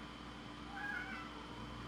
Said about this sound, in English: Oh, my cat is that Severian I just heard? Yeah. Yeah, he agrees, though. He's like, tell me about it, dude.